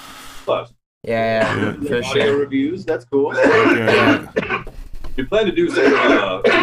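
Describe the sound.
Repeated rough coughing and throat-clearing from smoking dabs, loud and directly into the mic, in several bursts with voiced, talk-like sounds mixed between them.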